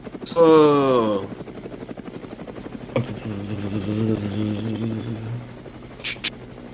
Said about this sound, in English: Oh, here comes a big helicopter.